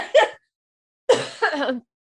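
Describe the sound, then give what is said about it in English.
Two abrupt coughs: a short first one, then a longer, rougher one that trails into a voiced, throaty end after a brief pause. No talking. “God, there's just going to be a montage of me coughing through this whole podcast.”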